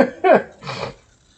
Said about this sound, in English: Yeah, I'm just sniffling because sometimes my allergies and all that.